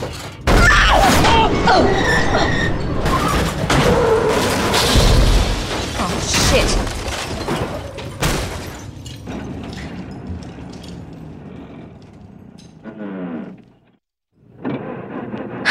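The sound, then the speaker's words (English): A truck smashes through a door with a loud, sustained crash of thuds, booms and shattering debris, then rumbling clatter fades into quieter mechanical noises and a brief near-silence. “Think a truck can bust through a door?”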